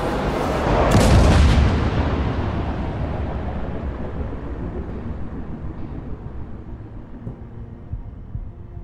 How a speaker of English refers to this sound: A streak of fire and light raced towards the ground. Then the fiery object struck the earth with a phenomenal bang.